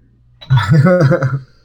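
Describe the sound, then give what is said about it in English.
A chair creaks once in a drawn-out, low groaning tone lasting about a second, its pitch wavering up and down before it stops, with no talking over it. “It used to be really quiet, but all of a sudden, whenever I record, it decides to be creaky.”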